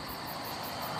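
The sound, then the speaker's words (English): Crickets chirp outdoors at 3 in the morning in a steady, rapid pulsing rhythm over a constant low background rumble of truck traffic, all fairly quiet with no voices. “So, I'm just gonna sit out here for a while with the crickets and whichever truck driver is awake at 3 in the morning.”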